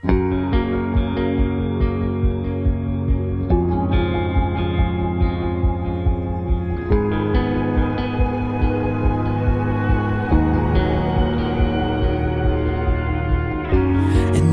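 A full, orchestral-style song plays steadily and loudly, layered sustained harmonies over a regular low pulse, with a sung melody carried along inside the lush, reverberant arrangement.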